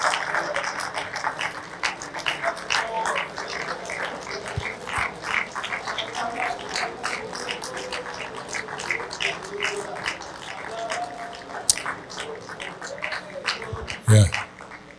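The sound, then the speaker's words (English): An audience claps steadily for the whole stretch, a dense, uneven patter of many hands, with voices murmuring underneath and one sharp, louder knock near the end. “You're funny the way you clap.”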